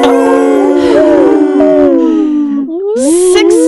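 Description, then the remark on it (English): A loud, ghostly wail with a howling quality rises and falls for several seconds, breaks off for a moment, then returns at a higher pitch. “I'm going to just use my special ability to do everybody's favorite whales from the grave.”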